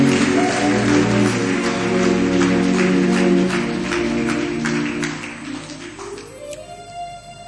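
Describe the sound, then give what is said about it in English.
A crowd claps steadily in rhythm over sustained keyboard chords, the claps fairly loud before thinning out and fading in the final seconds as the music shifts. “Whether you clap or not, I don't care.”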